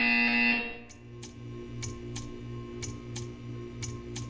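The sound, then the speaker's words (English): A loud, harsh video game buzzer blares for about half a second, then gives way to steady, evenly spaced ticking clicks over a low pulsing hum. No one speaks. “You will hear a buzzer. When you hear the buzzer, stare at the art.”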